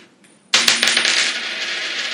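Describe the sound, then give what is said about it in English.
A flipped coin lands with a sudden bright metallic clink, bounces a few times, then keeps ringing and whirring as it spins down. No one speaks. “I usually don't get two wins on the flips.”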